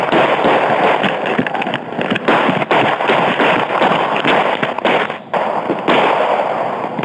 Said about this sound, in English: One of the officers fires 12 shots.